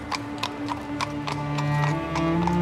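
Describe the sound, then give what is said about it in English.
Horse hooves clip-clop in a steady, even rhythm, about eight or nine sharp knocks, with a soft sustained hum running underneath: horses drawing a coffin and mourners from a station reached via Regent Street, Sydney, toward Rookwood Cemetery. “It was here the coffin and the mourners, which at the time were drawn by horses, started their journey towards Rookwood Cemetery.”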